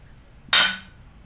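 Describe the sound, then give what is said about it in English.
A single bright clink of glasses touching in a toast to Marie Antoinette, sharp and ringing briefly before fading, with a quiet background and no voices. “Literally raising a glass to you because your life was garbage.”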